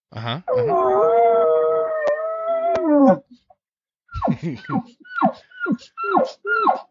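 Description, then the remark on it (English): A person imitates whining elk calls toward a bull elk: one long, wavering, high whine lasting about three seconds, then a pause and a run of six short, descending whining chirps in a quick rhythm. “Like I'm whining, just little stuff and keep going.”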